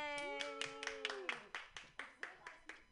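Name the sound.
hand clapping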